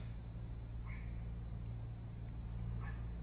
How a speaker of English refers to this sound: There's a dog barking outside. No, it's not a dog, it's a Pomeranian.